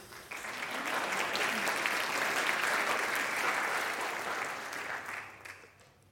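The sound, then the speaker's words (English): Audience applause swells quickly into a sustained, dense wash of clapping, holding steady for several seconds before tapering off at the end. No voices stand out. “Let's give a rousing applause”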